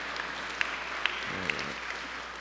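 An audience at First Baptist Church Brunswick applauds together in a hand clap of praise after morning worship, a steady dense patter of many hands clapping with a few sharper claps standing out, sustained evenly throughout with no voices clearly heard.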